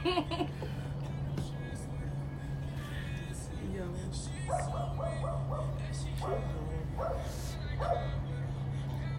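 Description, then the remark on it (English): Suburban dogs bark in quick clusters of short, high yips over a steady low engine hum, with muffled voices at times. “So this what suburban dogs sound like.”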